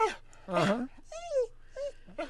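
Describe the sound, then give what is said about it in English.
A human voice mimics a dog whimpering, producing a series of high, wavering whines and short moaning cries, fairly loud, with breathy pauses between them. “That's a fake dog.”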